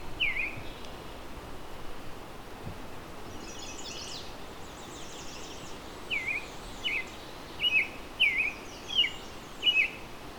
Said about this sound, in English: So as you can hear, there's an American robin here.